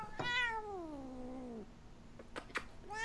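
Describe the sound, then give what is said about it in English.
A single long, drawn-out meow from an old male cat that slides downward in pitch, followed by a couple of short, sharp clicks or knocks and the start of another cry, fairly loud. “He is such a cranky old man. Just putting that out there. Cantankerous as hell. Cat tankerous.”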